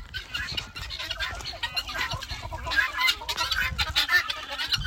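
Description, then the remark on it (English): A flock of guinea fowl calling loudly and continuously at a coop, harsh overlapping cries from many birds, with no one speaking. “Okay, this is what guineas sound like.”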